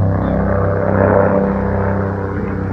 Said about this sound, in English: We have a helicopter flying over the drive now, so some unpredicted noise.